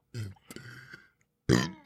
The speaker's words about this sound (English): Like I could burp if I wanted to right now. Might blow a lung out. I can make myself burp. Anytime on demand.